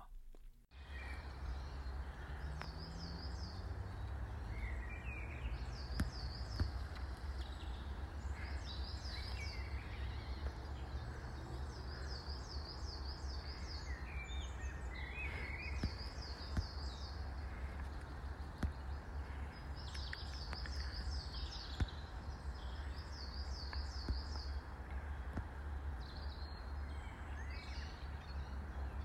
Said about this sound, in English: So that was another bird field recording there, and this one was taken within the woodland area, which was mostly pine trees, like a cathedral, the way that they were reaching over our heads, as my fellow walker said.